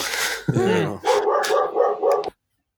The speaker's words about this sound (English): So did the dog. It's like perfect timing with these dog barks.